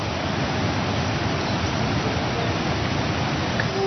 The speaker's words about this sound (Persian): بابا آبشارو ببین.